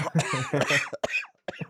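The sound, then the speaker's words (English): A loud coughing fit: a rough, throaty stretch followed by a few sharp separate coughs in quick succession, with brief pauses between them. “That's a real cough there, folks.”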